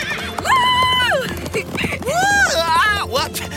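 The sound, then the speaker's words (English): Horse hooves clip-clop at a steady trot while loud drawn-out whinnies rise and fall over them. “Maybe we could ask the horses to speed up and take us to the music.”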